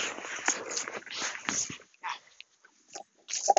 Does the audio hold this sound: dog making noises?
yes